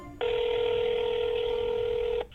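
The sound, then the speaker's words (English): A single steady telephone ring tone of an outgoing call sounds for about two seconds, clear and fairly loud over faint background hiss, then cuts off. No one speaks. “And honestly, it felt like a huge stretch to call the phone number because this was like a decade ago, but we tried to reach him.”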